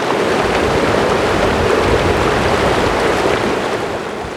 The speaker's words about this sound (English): All that could be heard was the river.